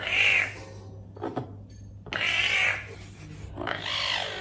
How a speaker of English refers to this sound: This kitten is doing this amazing trill basically to complain. And adults do the same thing. Just a little bit of a deeper sound.